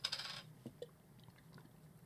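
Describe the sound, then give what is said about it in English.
A can of Michelob Ultra beer cracks open right on the mic with a sharp metallic snap and a bright half-second fizzing hiss, followed by a few faint clinks and small rattles, with no talking. “Let's open the first one. Yes. Right on the mic.”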